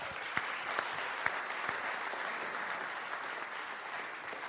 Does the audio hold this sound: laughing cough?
no